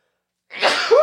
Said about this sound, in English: Excuse me. That was so dramatic. It's how I sneeze.